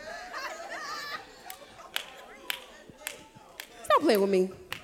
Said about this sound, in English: You get all the way on the side. You barely clapping.